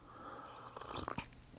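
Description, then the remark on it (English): A quiet sip of pour-over coffee: a brief slurping draw with a few wet mouth clicks, then a soft swallow, with no talking. “And then I just took a sip of my pour over coffee, which is next.”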